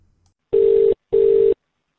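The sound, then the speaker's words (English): Two steady, mid-pitched telephone line tone bursts from a recorded police emergency call in Australia, each just under half a second long and separated by a short gap, sounding alone with no voices. “Although she then hung up, the operator called back, and that call was still connected when police officers arrived. Now, here's the call.”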